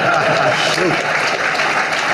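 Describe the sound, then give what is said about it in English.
A dense, steady burst of clapping hands, like a small crowd applauding, with a faint voice briefly audible underneath. “You're supposed to clap for that.”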